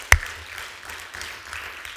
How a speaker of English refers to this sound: But when, come on, you can give him a good round of applause.